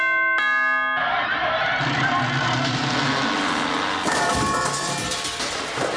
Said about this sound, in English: We're here at the Big Hoose. I'll ring the bell.